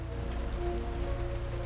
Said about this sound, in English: The rain had picked up again.